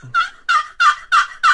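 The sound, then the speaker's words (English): A new, one-sided wooden turkey box call, played live, sounds five raspy, evenly spaced yelps in a steady rhythm, imitating a raspy old hen. Fairly loud, with no talking. “This is just the box call.”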